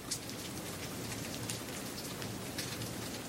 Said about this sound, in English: A faint evening rain fell over Camp Patience. Back in Surratt's childhood home, the rain used to make a sharp sound as it hit the shipping container's roof. But here in the camp, it was a whispered admonition, a soft shh against the tattered tents.